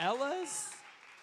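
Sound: audience applause and cheering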